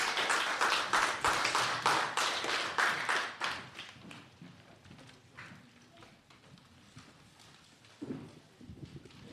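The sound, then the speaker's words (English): A round of applause for the discussion participants: dense, rapid clapping that starts loud and full, then thins out and fades over the next few seconds, leaving a few scattered claps and faint murmurs. “Can you give a round of applause to these lovely discussioners?”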